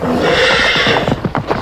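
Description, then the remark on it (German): A loud horse whinny rings out over a steady bed of noise, followed by a quick run of hooves clip-clopping in an uneven rhythm. No one speaks. “Als sie weit genug von der Landstraße entfernt waren, kletterten sie auf die Rücken der Pferde und ritten.”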